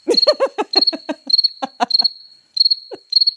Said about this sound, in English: I have to do that cricket for myself on that one.